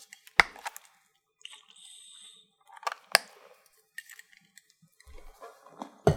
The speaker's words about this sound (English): Before I continue, I just need a brief drink of water.